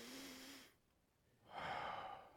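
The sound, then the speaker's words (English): A person imitates a baby's deep gasping breath heard in the middle of a prayer: a breathy, slightly voiced exhale, a short pause, then a louder, rasping intake of air, alone with no talking. “in the middle of the prayer, we hear Archer do this”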